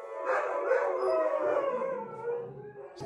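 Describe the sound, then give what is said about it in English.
Dogs upstairs in a house howl together after hearing something, in a sustained, wavering chorus that rises and falls steadily for a few seconds, sounding somewhat muffled. “But what happened now was the dogs upstairs, they heard something happening somewhere.”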